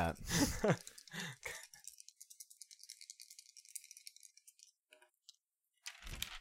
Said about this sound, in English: Don't worry, everybody. I'll show you how to roll dice.